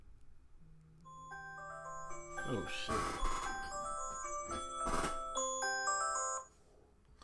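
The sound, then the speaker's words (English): An electronic alarm rings out in steady, overlapping melodic tones for about six seconds, with a man's brief exclamation and a few bursts of noise partway through before it cuts off. “Alarm. I don't even know how I got an alarm, man.”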